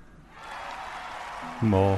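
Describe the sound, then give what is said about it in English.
A crowd cheering and applause sound effect swells up from near silence into a steady, dense roar of clapping, with a louder tonal, voice-like sound cutting in over it at the very end. “Oh, it's crowd cheering and applause.”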